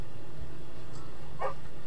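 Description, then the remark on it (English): A single short, high dog yip or bark cuts through near the end, set against a low steady background rumble with no talking; the dogs yip as their dinner is slopped into their bowls. “They yip and bark and whine and dance circles.”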